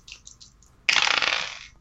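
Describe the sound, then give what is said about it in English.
Dice being rolled: a few light ticks, then a sudden loud rattling clatter of tumbling dice that gradually fades over nearly a second. No voices. “Can I get another roll?”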